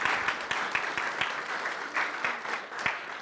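crowd, audience round of applause

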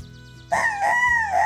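bird, rooster crowing

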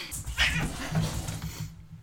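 animal, cat vocalizing

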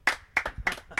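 crowd, slow clap

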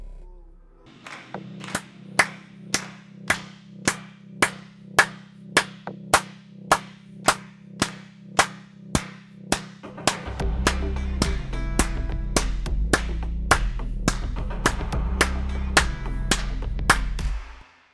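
human body sound, rhythmic hand clapping

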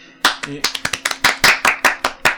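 crowd, round of applause

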